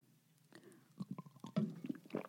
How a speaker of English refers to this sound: I was just taking a sip from my Crime Junkie water bottle